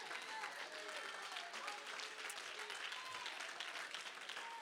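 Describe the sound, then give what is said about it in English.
A church audience, standing, applauding steadily in praise of God, a dense, continuous wash of many hands clapping at an even level throughout, with faint cheers or voices woven through the noise. “I wonder if you're with me right now, could you stand and give God a hand clap of praise?”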